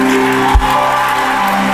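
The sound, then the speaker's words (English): An audience claps in praise, a dense, steady wash of many hands over sustained musical tones, broken once by a brief low thump. No one speaks. “Your clap is tormenting Satan.”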